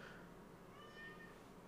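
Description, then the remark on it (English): A single drawn-out cat meow, faint, rising and falling over a low background hum with no one talking; the cat wants to be let in. “So they're probably gonna hear my cat screaming and thinking I'm killing her.”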